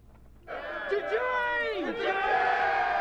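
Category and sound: crowd, bar crowd cheering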